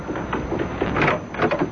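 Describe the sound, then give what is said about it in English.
An office door opens with a drawn-out, rumbling scrape lasting under two seconds, fairly loud, with no voices over it. “Come in, Westfield. Come in. Close the door.”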